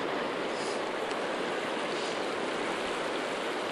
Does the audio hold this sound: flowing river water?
yes